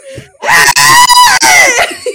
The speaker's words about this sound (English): But so we dictate on our dictaphones. And it does pick up a lot of background noise. And in one of her dictations, you could hear my screaming goat.